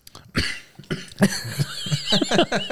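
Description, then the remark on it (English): A harsh coughing fit: several rough, explosive coughs in quick succession with raspy breaths between them, loud with no talking. “So, listeners, sorry, I am coughing a leg up at the moment.”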